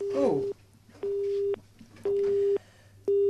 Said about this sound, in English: Oh, we've got some squeaky noises on the phone.